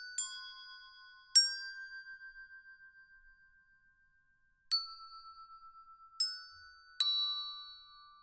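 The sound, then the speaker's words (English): Small bells ring out in five separate, irregularly spaced strikes, each bright, high tone shimmering and slowly fading before the next. The ringing is soft and clear, with no voices. “It is a frozen scene that has the ring of small bells and children's laughter.”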